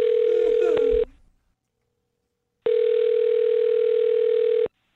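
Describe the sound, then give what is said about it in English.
A telephone ringback tone purrs through the line as a host of the radio show Brooke and Jubal in the Morning dials a woman's phone number: a steady electronic ring of about a second with a faint click, then, after a pause, a second ring of about two seconds. “Well, I'm going to dial her phone number and get her on the phone and find out why she's not calling you back.”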